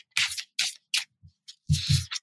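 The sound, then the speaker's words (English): A deck of tarot cards being shuffled: a quick series of crisp, papery swishes and soft taps in uneven bursts, ending with a couple of louder riffles. No voices. “So grab your cards and let's shuffle.”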